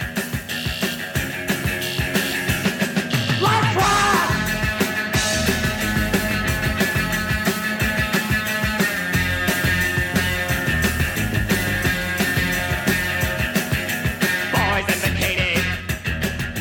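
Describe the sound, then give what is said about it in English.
The closing rave-up of a loud, dense 1979 rock recording at full tilt, with driving guitar and pounding rhythm, punctuated by a couple of high, sliding vocal shrieks from the band's singers riding over the band. “closed with a gale force rave up, egged on by screams”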